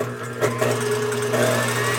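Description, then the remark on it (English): An electric mixer whips egg yolks to beat air into them until very light, with a steady, loud motor whine, its humming pitch holding constant over a bright whirring hiss, with small surges as the beaters churn. No voices. “I'm gonna go ahead and whip my egg yolks.”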